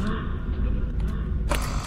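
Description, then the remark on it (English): A video game security door grinds shut with a steady, low mechanical rumble, then lands with a sharp, bright clank near the end. It's fairly loud. “Close the door.”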